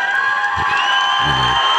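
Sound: audience cheering and applause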